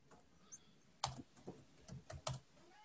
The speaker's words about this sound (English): Okay, then. Any feedback or... sorry, I'm just typing it in as well on my little thing so I know my starting lineup.